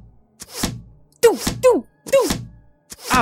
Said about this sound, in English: Oh! There's arrows! Arrows are being thrown at me! I gotta run out of here. Oh, one of them got me in the leg.